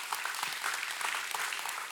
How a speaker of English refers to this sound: Thank you for the golf clap.